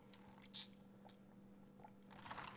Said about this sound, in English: Sip of that. Don't worry, guys, this is orange juice with some vitamin C powder, because, you know, we got to keep our immune system strong out here.